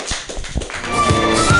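A comedy show audience breaks into applause for the next comic coming to the stage, starting as a few scattered, sharp claps and quickly thickening into a steady wash of clapping, with a faint sustained tone running underneath.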